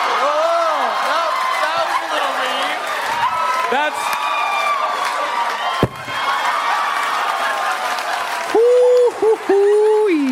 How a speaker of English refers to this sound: That thud that you hear is Bryan Cranston literally dropping the mic on the floor after delivering the mother of all your mother jokes.